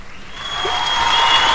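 Canned applause played from a button in a studio: a dense, steady wash of many hands clapping, fairly loud, with no voices over it.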